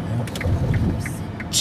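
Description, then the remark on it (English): The engine of a Challenger muscle car rumbles loud and deep, sustained throughout as the car speeds off, with a few brief higher-pitched ticks and hisses on top. “Guy's speeding off in his muscular car.”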